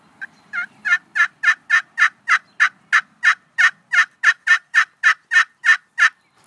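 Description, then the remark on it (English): A steady run of about fifteen evenly spaced turkey yelps played on a hand turkey call, loud, each note a short raspy burst with no talking underneath. “So you got your yelp.”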